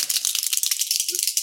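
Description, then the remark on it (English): A handheld clapper noisemaker rattles to celebrate a prize winner announcement on .NET Rocks, in a fast, continuous burst of sharp, dense clicks, bright and fairly loud throughout, with a brief low tonal blip near the end. “You got our clappers ready?”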